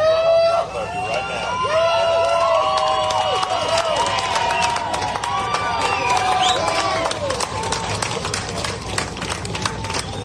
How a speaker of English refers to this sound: as his body was being removed from the prison and transported by hearse for funeral preparation, the crowd outside once again celebrated the final leg of the journey to justice, and they erupted, cheering for the hearse as it drove by them.